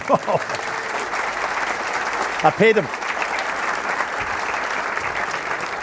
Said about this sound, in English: Now would be a good time for a round of applause.